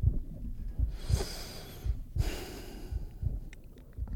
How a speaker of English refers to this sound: I can't even like breathe through my nose because it's so loud.